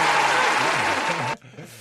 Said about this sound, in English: Round of applause, guys. Man. Round of applause.